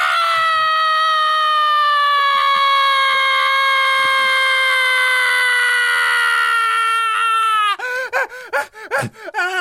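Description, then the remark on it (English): A loud scream held unbroken for nearly eight seconds, its pitch sagging slowly, before it breaks into a few shaky, gasping cries at the end. “That is a long scream.”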